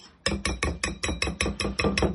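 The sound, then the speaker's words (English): Egg yolks and water being beaten briskly in a bowl, with a quick, steady run of about a dozen sharp clinking strokes against the side. No one speaks. “Beat this with the water and the egg yolks. Dissolve the egg yolks.”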